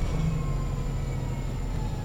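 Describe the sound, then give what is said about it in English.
An F Market city transit bus running, with a steady, loud low-pitched engine rumble and faint high whining tones throughout, with no one speaking. “This F Market bus.”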